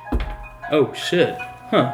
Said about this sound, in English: Put it on vibration, huh? I did. I vibrate. It's my alarm. Oh, that's good. It's an alarm to get up and get ready.